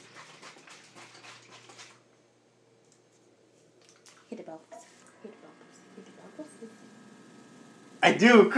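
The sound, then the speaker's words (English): A full, shaken carbonated drink sprays out with a sharp, hissing burst, then settles into softer wet drips and squishy sounds, ending with a sudden loud rush of noise, with faint voices. “Did that just spray all over? No. It just sprayed.”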